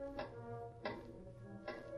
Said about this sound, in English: The minutes dragged slowly, marked by the heavy clock in one corner of the room.